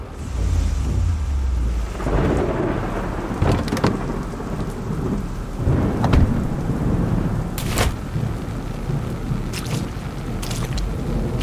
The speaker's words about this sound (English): I stepped out into the rain, the mud sucking at my soles.